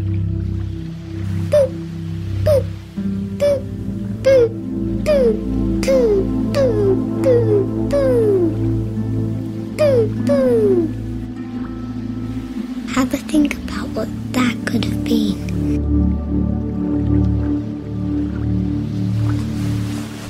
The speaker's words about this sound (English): Guesses are brilliant, but the answer was a microwave.